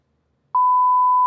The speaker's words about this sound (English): Sorry, I didn't know it was that loud. I put a sensor beep to sort of signify that we're in a new time.